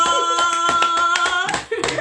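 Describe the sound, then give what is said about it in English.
Steady, rhythmic clapping in a round of applause welcoming a newly introduced person, sharp claps repeating quickly at an even pace over a sustained high ringing tone in the background. “A round of applause.”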